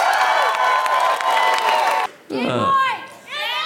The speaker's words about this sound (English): All right, let's get a round of applause as we go into our break. Thanks.